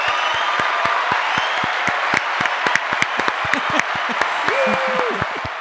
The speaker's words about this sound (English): So I want to give a little round of applause. Everybody clap for, 200.